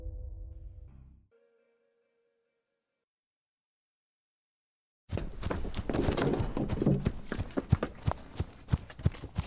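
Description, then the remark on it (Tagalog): After a short musical sting and a few seconds of silence, quick, heavy footsteps of people running pound along at a running pace, loud, with a steady rhythm of thudding impacts. “Kanina pa tayo tumatakbo eh.”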